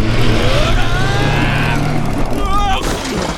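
A car engine revs steadily with a loud, droning hum as the car is driven toward a wind machine, its pitch climbing into a whining rise near the end as it pulls away.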